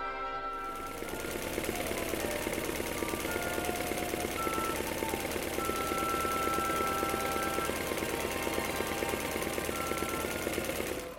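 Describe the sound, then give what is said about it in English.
A pedal-driven sewing machine, its pace controlled by a foot moving the pedal up and down, runs steadily for about ten seconds, a dense, even mechanical whir with a fast rattling pulse and faint higher whining tones. No one speaks. “The hum of the machine soothes both Mr. Chuck and his mum.”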